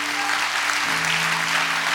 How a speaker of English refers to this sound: Clap your hands real big for the word tonight. Clap your hands real big for the word tonight.